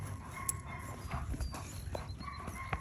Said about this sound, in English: That was an English bulldog. English bulldog. Yeah.